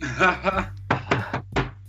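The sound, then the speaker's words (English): A brief bit of talking, then knuckles rap on wood three times in quick succession, fairly sharp. “Yeah, here's hoping, knock on wood.”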